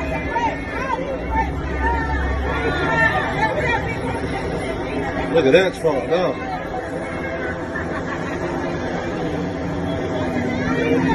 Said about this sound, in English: And the people are, did you hear them hollering? They were so excited to see President Trump. Very, very exciting.